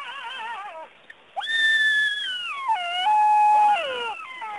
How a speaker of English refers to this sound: Hey, Editor Amity, find what a Jackal sounds like.